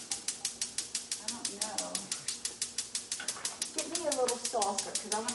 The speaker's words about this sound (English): Now, some of you might be inquiring about the bomb-ticking noise that's happening. That is natural for our home.